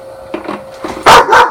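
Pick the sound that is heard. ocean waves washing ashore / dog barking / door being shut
dog barking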